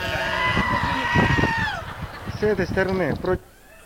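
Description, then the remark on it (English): A sheep stuck in a trench bleats loudly as a little shepherd boy pulls it out: one long, drawn-out cry that sags at the end, then a shorter, quavering bleat after a brief pause. “The sheep is in a trench, and you've got a little shepherd boy pulling him out of the trench.”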